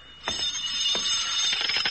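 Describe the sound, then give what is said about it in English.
A telephone rings in the early evening with a harsh, rattling metallic bell that starts abruptly and keeps going steadily without a break. It is loud and high-pitched, and no one speaks. “But everything really began 2 days later, in the early evening, with the ringing of the telephone.”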